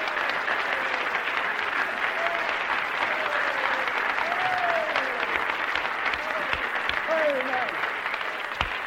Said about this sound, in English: Give Jesus another clap, everybody. Bless the Lord.